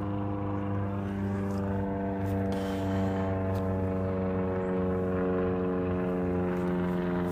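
A propeller airplane flies overhead, its low engine hum loud and continuous with strong harmonic tones, holding unbroken for the whole stretch with no voices.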